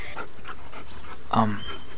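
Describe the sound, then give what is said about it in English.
A three-headed dog named Cerberus pants in quick, breathy puffs, then lets out a short, nasal whimper partway through, fairly quiet. “Oh my god, your dog has three heads.”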